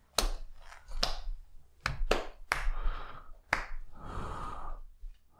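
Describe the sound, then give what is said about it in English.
Sparse, uneven applause from a small audience as a guest is called to come on over: a handful of sharp, loud claps spaced irregularly, with a softer patter of clapping filling the gaps. No one speaks. “Let's give him a round of applause, everybody.”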